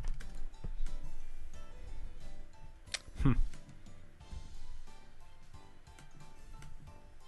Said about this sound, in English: What are you typing?